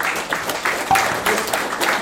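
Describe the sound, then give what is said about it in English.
A crowd claps their hands together in a dense, steady burst of applause, many overlapping claps forming a loud, crackling wash that holds for about two seconds with no talking. “Come on, give me a hand clap.”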